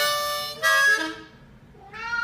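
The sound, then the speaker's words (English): A cat meows in a drawn-out, wavering cry that rises and falls, then gives a second shorter meow after a brief pause. The calls are fairly loud, with no talking. “Sing the blues with the cat?”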